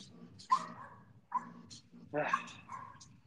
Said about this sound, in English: Hey, dogs, please quit. Thank you.